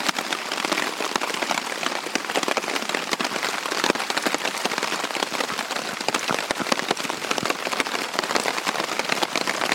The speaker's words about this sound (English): and it started to rain, and it hasn't stopped. So it's now 11 o'clock the next morning, and I'm basically just waiting for the rain to let off a little bit.